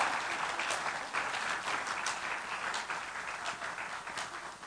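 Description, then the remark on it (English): An audience at a morning church service applauds steadily, many hands clapping at once into a dense, sustained wash of crackling claps with no clear individual beats, holding fairly even for the whole stretch. “So would you give them all a round of applause and thank God with me this morning?”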